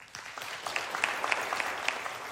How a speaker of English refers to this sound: So the first one, clap if you've ever heard of King David.